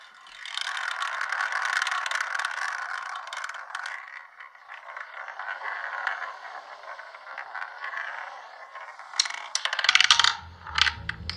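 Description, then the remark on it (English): A roulette wheel spins, its ball rattling and whirring steadily for several seconds before slowing, then clattering to rest with a few sharp clicks and knocks, with no talking. “Oh, then we'll spin the roulette wheel of ice diving.”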